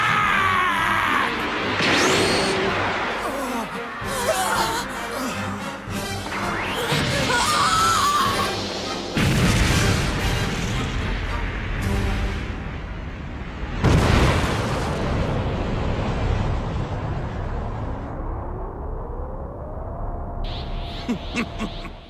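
A loud cartoon energy blast, Super Vegeta's Big Bang Attack, rips through with rising, sweeping whooshes, a shrill scream, and a booming explosion that roars and rumbles before fading into a high whine.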